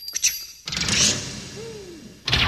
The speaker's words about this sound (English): As soon as Coley entered the treasure cave, the cave door slammed shut. And it was dark inside.